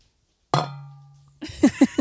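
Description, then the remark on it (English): A single sharp clink of drinking jugs knocked together in a toast, ringing out and slowly fading for nearly a second, before voices break in with short bursts. “Well, do you want to cheers?”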